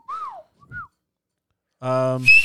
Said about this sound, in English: I could do that whistle. All right, dude, I can't whistle without my fingers.